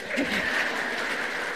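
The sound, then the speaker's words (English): A crowd applauds, a steady wash of many hands clapping at a moderate level, sustained without pause for over a second and a half. “This is where you clap.”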